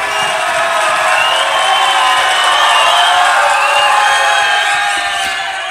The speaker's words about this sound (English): Let's get the fans cheering on this one, honestly.